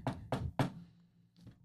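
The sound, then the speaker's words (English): Three firm, evenly spaced, loud knocks on a door, followed after a short pause by a single softer knock. No one speaks. “Then I knock.”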